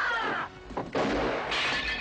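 Dishes smash and shatter in a loud, continuous crash, with bright, glassy breaking bursts tumbling over each other for a couple of seconds, in a scene from the 1991 film Don't Tell Mom the Babysitter's Dead. No one speaks.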